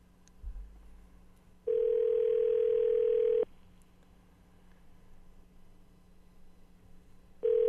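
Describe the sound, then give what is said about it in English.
A steady, loud telephone tone sounds for nearly two seconds while phoning a number, drops to faint line hiss for several seconds, then starts again at the end, like a call ringing through on a handset. “I can't believe, though, when I phone this number that Bob gives me, the listener, that it's actually the same freaking voice as the guy that called me.”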